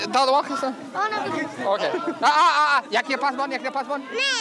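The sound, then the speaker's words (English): Busy crowd chatter with many overlapping voices, lively and steady, punctuated by brief bursts of louder talk and occasional laughter rising out of the babble, from a crowd amassed under a pavilion at an outdoor Nowruz festival. “The music on the PA system winds down as another man takes control of the microphone and shepherds a crowd that's now amassed under the pavilion.”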